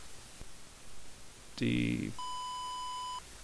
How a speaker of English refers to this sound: Beep.